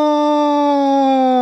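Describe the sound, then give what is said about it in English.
A voice imitates the howl of a Wendigo: one loud, sustained mid-pitched wail, rich and buzzy, holding steady and sagging slightly in pitch, with no talking over it. “Do you mean what did the Wendigo sound like?”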